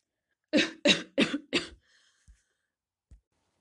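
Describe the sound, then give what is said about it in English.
Four deliberate, evenly spaced coughs burst out in quick succession, fairly loud, followed by a couple of faint soft clicks in otherwise quiet surroundings. A person is faking a cough on purpose as a demonstration. “You may actually fake a cough, okay, if you want to. But you also may come up with something like... okay, cough like that”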